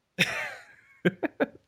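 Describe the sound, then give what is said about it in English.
A deliberate throat clearing: one drawn-out raspy rumble followed by three quick, sharp hacking bursts, with no talking. “Let me clear my throat.”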